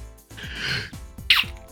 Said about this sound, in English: As I sneeze all over the place